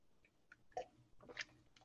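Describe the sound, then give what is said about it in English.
Quiet sipping of water: a few soft slurping and swallowing sounds with small mouth clicks, two slightly louder gulps standing out against near silence, with no one talking. “So let me just get a sip of water.”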